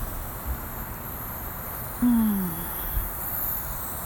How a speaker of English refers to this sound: I think you can hear my crickets or whatever those night bugs are.